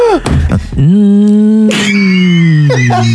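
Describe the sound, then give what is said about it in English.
A person imitates a feeble car accelerating hard onto an on-ramp, with a sputtering start and then a sustained, buzzing hum that holds a steady pitch and sags slightly at the end. “It doesn't sound like a car. It sounds like something that is almost out of batteries.”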